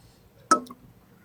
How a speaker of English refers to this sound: We got a good sound from these. Yeah, glasses. We do. It's good. That noisy good. Fucking table. We got great. Noisy glasses. That was great.